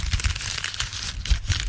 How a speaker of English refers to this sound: I don't know if that's loud enough. It'll be loud enough. And it's rustling paper.